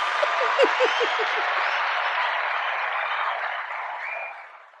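A round of applause from a crowd, dense steady clapping that holds strong for about four seconds and then fades out, with a few brief higher whoops or cheers near the start.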